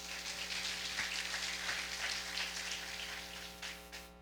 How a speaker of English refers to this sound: ladies and gentlemen, let's clap.